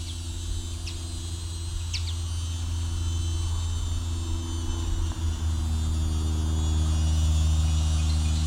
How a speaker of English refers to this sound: A lot of cicadas coming in now.